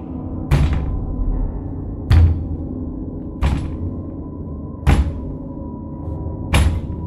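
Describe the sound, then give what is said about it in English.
Five single, solid knocks on a door, spaced a second or more apart at an uneven pace, each with a dull low thud, over a steady low background hum. No one speaks. “The sound causing your heart to race as the knock on the door comes again.”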